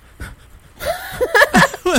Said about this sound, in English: Can you hear the breathing? Yes, I hear the turmoil.